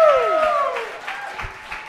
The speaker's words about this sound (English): Let's give them a round of applause, everybody, one more time.